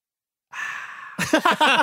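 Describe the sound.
A voice imitates opening a can of Sprite: a steady breathy hiss lasting over half a second, then a few quick voiced, gurgling bursts.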